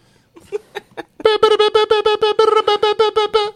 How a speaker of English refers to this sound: Translated via Morse code.